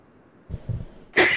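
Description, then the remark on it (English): A single loud sneeze bursts out sharply after a couple of brief, low breathy catches, with no talking around it. “Bless you.”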